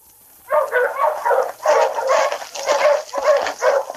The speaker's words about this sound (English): Already, Luke could hear the approaching dog team of his pursuer.